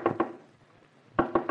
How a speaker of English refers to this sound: You got a new neighbor, a woodpecker. A what? Well, a pixelated rat-a-tat-tat or something like that, he called it. Good heavens. It's the loudest of the species. Apparently never sleeps and makes a noise like...